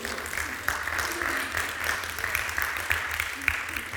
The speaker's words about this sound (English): Come on, I know you want to give him a good round of applause.